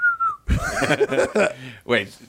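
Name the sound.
whistled bird call imitation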